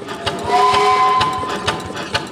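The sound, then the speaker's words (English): A steam-powered industrial machine with large gears and metal pistons at Kinetic Steam Works, in a warehouse behind a metal scrapyard in the Bay Area, runs with a steady mechanical clatter and periodic chuffing bursts, while a thin whistling tone rises over the noise, fairly loud. “I'm surrounded by large gears, metal pistons, and billowing clouds of hot, wet steam.”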